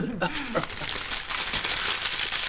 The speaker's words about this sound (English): I feel rude crumpling on a note like that.